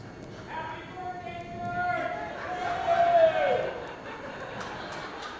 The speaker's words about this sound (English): Did you hear that? They yelled back up. That was great.